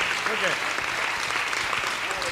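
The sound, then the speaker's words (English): A standing church audience gives God a clap offering for a visiting apostle, applauding in a steady, dense wash of clapping that holds at a fairly loud level throughout, with faint voices rising briefly within it. “And I want you to give God a clap offering for this gift to the body of Christ.”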